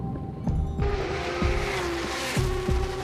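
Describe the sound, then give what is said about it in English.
A race car branded all over with Tully's roars steadily, its engine pitch rising slightly, with a faint squeal of tires and a few sharp thumps and bursts recurring throughout. No one speaks. “And every time we saw a race car, we see Tully's branded all over this race car.”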